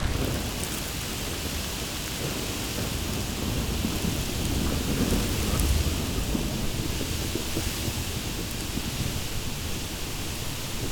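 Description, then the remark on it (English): A thunderstorm: steady, dense rain hisses throughout while deep thunder rumbles underneath, swelling briefly near the middle. Loud and continuous, with no voices. “See what happens if we make a storm for chipmunks.”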